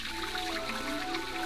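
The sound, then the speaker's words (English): Continuous splashing and trickling water from a recirculating fountain that reuses the same water, in the radio drama The Fountain Plays starring Charles Laughton on Suspense; a steady bubbling wash with faint droplet patter on top and a low hum beneath, with no voices. “Most ingenious, my fountain. Costs a little to run because it uses the same water over and over again.”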